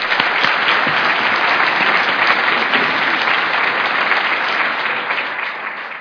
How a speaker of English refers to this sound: Can we please give her a round of applause?